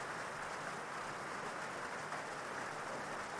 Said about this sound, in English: Remember, this is your experience, so you can imagine that you're anywhere you wish to be, all cozy and warm, and listening to the sound of the rain.